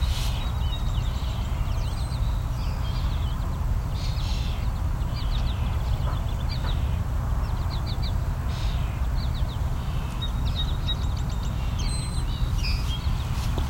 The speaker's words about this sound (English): So this orchard oriole is being drowned out by the other birds singing.